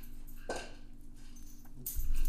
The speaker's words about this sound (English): The dog is discontent with the way her... The dog is angry as fuck at this dog bowl. Yeah. I've thought about getting her a new dog bowl, but I don't think it would make a difference.